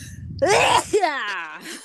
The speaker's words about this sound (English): I've heard that if you stick your tongue at the top of your mouth. Stop it. It'll stop a sneeze. Also, I think if you. Oh, here it comes.